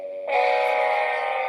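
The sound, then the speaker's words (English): The Dum Dum Award segment music on the show Live from America: a brief, loud burst of distorted, harmonically rich tones swells in after a softer held note and sustains steadily, like a blaring horn-like jingle sting. “So let's go ahead and cue that Dum Dum Award music, because we got plenty of people that we could give this to today.”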